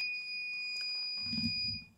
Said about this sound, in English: Nigga, that was a shot clock.